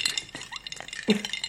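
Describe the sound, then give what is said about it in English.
Glasses of lemon spritz clink together in a toast, a few quick bright taps, with a slightly louder clink near the end, against a quiet background. “So we thought we'd do our over drinks spin on that and have a lemon spritz. Yeah. Cheers.”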